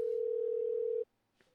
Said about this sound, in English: It's ringing.